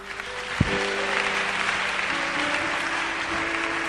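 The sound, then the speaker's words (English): A church audience claps steadily for several seconds, a dense, even wash of many hands with a sharp thump near the start and faint sustained tones humming underneath. “You won't clap.”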